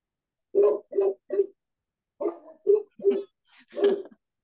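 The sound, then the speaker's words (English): Two big dogs bark in two quick runs, three sharp barks, a brief pause, then several more, moderately loud with no talking over them. “Yeah, so we have two big dogs. We get to have them, and they are a great warning system.”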